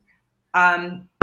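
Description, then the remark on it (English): A short, humming vocal sound, then one sharp knock on a hard surface right at the end. “That's me knocking, knock, knock.”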